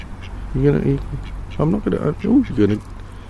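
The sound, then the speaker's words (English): A duck swimming around a platform quacks in a short series of nasal, raspy calls: one early quack, a brief pause, then four or five quacks in quick succession over a steady low background hum. “You get some silent ducks, but these ones are.”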